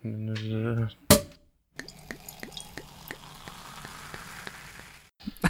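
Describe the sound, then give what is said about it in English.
Bubbly Romulan ale pours into glasses with a steady fizzing hiss and scattered crackling pops for several seconds, after a brief voice and a sharp click at the start. “So, anyway, pour some glasses here.”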